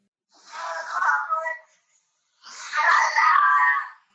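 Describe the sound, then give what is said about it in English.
A recording of a pet cat, pitch unaltered, giving two drawn-out, wailing meows separated by a short pause, each loud, harmonic and eerily moan-like, with no talking over them. “And how I know this is because I am going to play you a recording of my cat, and this is what proves history was wrong.”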